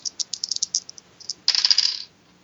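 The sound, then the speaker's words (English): Dice rattle and clack in quick bright clicks, first a scattered series of taps, then a dense burst of rolling clatter before settling, as they are rolled to determine what happens to a player. No voices are heard. “Let me roll for what happens to you.”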